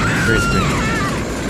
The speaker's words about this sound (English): Missile to the plane wing. Has a terrible death sound. That's a great scream. Listen to that.